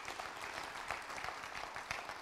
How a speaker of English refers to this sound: If you're a visitor this morning, we love you. Come on, give our visitors a round of applause this morning.